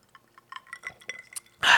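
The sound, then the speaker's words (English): Several light clinks of drinking glasses tapping together in quick irregular succession during a New Year toast, each with a short bright ring, ending in a sudden louder breathy rush of noise. “I have a drink. So before we proceed, Happy New Year. Happy New Year. Salute. Cheers.”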